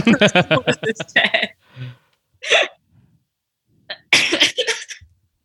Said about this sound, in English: I feel like I'm only coughing. I don't have corona, I don't think. That's not me coughing for that reason. I think I'm coughing because I inhaled like 400 pounds of dust, like cleaning my patio.